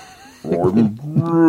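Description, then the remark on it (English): A person's voice imitates whale speech with slow, drawn-out, warbling moans that bend in pitch, fairly loud, lasting about a second after a brief quiet start. “talking to whales.”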